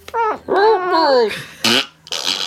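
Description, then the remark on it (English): A voice mimics a fart, a drawn-out wavering raspberry warped into a two-syllable plea sounding like "help me", followed by short breathy hissing bursts. Fairly loud and alone, lasting about two seconds. “How can a fart sound like help me?”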